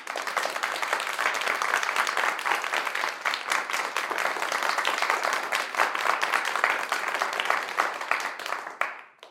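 A crowd applauds with steady, dense clapping at a fairly loud level, sustained for several seconds before tapering off quickly at the end.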